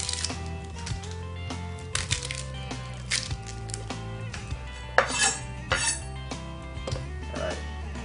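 Kitchen sounds of a knife chopping one end off half a red onion and peeling off its first layer of skin: scattered sharp taps and clinks on a cutting board with brief scraping, over a steady low hum, no talking.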